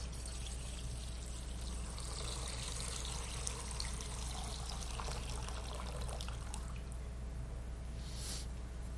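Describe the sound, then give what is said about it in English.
Baptismal water pours steadily into a baptismal font in a church for several seconds, a continuous splashing trickle, with a brief brighter splash near the end; no one speaks. “And I'm going to pour it into this font here.”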